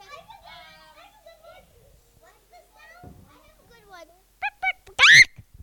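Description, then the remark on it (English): A person does a chicken imitation, with quiet warbling clucks that build to two sharp clucks and a loud, shrill final squawk, all in a high, childlike voice. “That was a very good chicken.”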